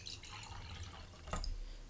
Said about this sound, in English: Alright, we're gonna pour. There's some good audio there.